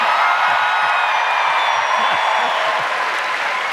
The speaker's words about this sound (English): That, I presume, was the rebel yell I've heard so much about.